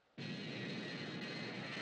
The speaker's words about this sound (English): And we have a shot of a plane taking off, which was not a stock shot. We actually shot it.